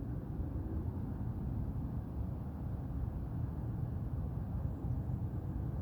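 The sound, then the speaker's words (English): A steady, low rumble of traffic hums on without a break, with cars passing in an otherwise quiet garden where birds can also be heard. There are no voices. “Can hear birds and cars.”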